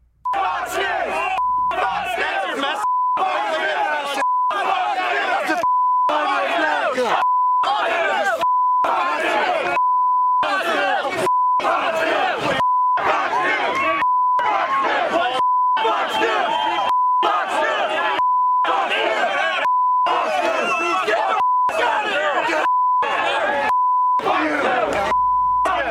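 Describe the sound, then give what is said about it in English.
A loud, agitated mob shouts and chants in a clip from around 2008 while a steady censor bleep tone cuts in over and over, roughly every second and a half, repeatedly masking the yelling throughout. “I'm sorry if that sounded like a fire alarm to you, because they have to bleep out every second and a half, every millisecond.”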